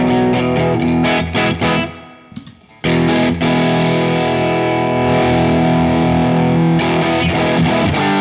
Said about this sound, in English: And the mid range is completely different on a Vox amp versus a Fender amp. So like it's It already sounds like a little more nasally. Yeah. This is the clean amp.